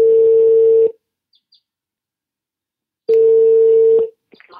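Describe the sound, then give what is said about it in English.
A Skype call ringtone sounds twice as a call is placed: a steady, bright tone about a second long, a pause of roughly two seconds, then the same tone again, loud, with no one talking. “I reached him by Skype.”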